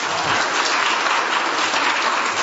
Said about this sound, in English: And I would like for you to give her a big round of applause because she does a lot.